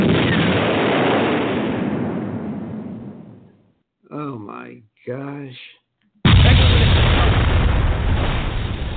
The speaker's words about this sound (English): I mean, the explosions won't stop. It's so crazy.